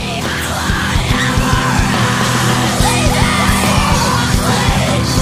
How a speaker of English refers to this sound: Obviously that builds up, but this has got the best scream on the album. Is that …? Aye. That's pure chilling, man. That, what a riff, what a scream that is.